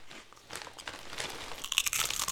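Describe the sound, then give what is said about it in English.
Crunching of a small pork rind, a series of crisp, crackly bites and chews with bright brittle snaps growing louder toward the end, no talking. “So now I've got a pork rind.”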